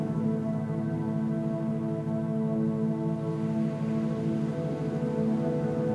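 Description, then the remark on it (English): Sea waves at the beach at sunset make a steady, unbroken wash of noise with no clear individual breakers. A low, humming tonal drone sits beneath it, and no one speaks. “You might be able to hear the sea behind me.”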